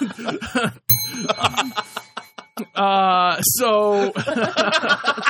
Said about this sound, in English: I feel like that's a bell.